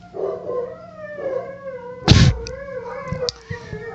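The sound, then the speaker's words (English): Dogs howl in long, wavering, overlapping cries, fairly loud, broken midway by a sharp bark before the howling carries on with a few short yelps. “Now that the dogs have stopped freaking out.”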